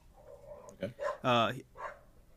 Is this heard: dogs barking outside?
yes